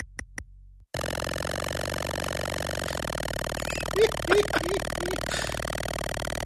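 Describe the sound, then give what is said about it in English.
A steady, buzzy electronic car engine drone from the Apple II version of an old computer game, heard while driving, runs continuously after a brief pause, unchanging in pitch, with a few faint chirps and a short murmured voice near the start. “That's the car engine noise, and it just makes that for as long as you're driving.”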